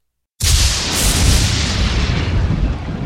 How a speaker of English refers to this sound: A lightning bolt struck the bullet in flight, exploding it inches away from Eva's face.